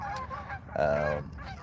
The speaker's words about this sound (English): The geese are going nuts.